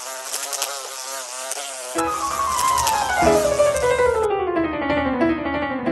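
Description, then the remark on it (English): Flies buzz steadily, a wavering high-pitched drone that shifts and glides downward in pitch as the insects move, with a denser, fuller buzz joining partway through. “Wouldn't it be wonderful if your horse could enjoy a zone of repellency from pesky flies?”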